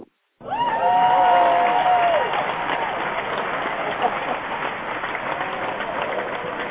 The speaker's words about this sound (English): And I sit here and I chuckle through the whole applause, but I'm getting a little bit better.